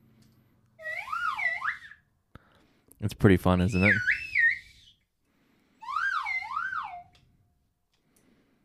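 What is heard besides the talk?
slide whistle being played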